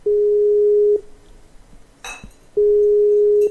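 A steady electronic telephone ringback tone sounds clearly for about a second, pauses with a brief click and rustle in the gap, then starts again, as an outgoing call from Radio Free Sarawak waits to be answered.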